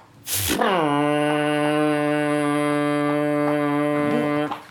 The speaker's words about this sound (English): And the dog again, because obviously the dog doesn't like the foghorn. Doesn't like the foghorn on the boat.